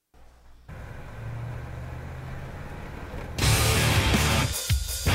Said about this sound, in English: Fuck yeah. That dude just got hit by a fucking bus. So yeah. He just got hit by a bus. He is fucked.